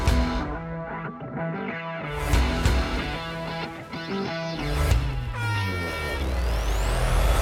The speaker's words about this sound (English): hear the air horn sounding, marking the final 2 minutes of the open red flag conditions.